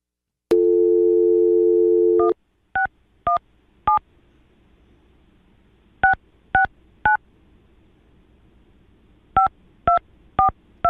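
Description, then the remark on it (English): A steady telephone dial tone plays for about two seconds, then stops and ten short touch-tone beeps follow in three quick bursts of three, three and four, with brief pauses between. No voices. “That I can't figure out how to dial a goddamn number!”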